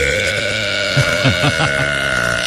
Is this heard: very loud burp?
yes